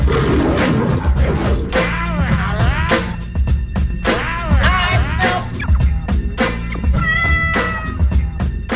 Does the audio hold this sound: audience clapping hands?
no